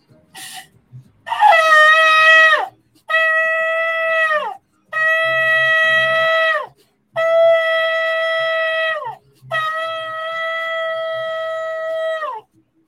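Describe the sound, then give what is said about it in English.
A shofar is blown during a sermon, sounding five long, loud blasts separated by short pauses. The first wavers and bends in pitch; the rest hold a steady, bright tone before sliding down at the end. “So let's blow the trumpet. Let's blow the shofar.”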